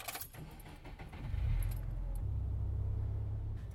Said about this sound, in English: Just let me start the engine.